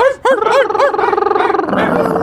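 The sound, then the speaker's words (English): Several human voices imitate dogs, letting out a quick string of high, yelping barks that overlap, then blur into a louder, more chaotic chorus of yaps and howls toward the end. “No, imagine being on the train with your headphones on, and you say, "I'm not gonna laugh at them barking like dogs."”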